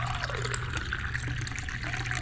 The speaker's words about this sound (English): Jolly poured some into a cup.